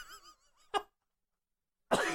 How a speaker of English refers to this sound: I'm trying so hard not to cough, and then you made me laugh.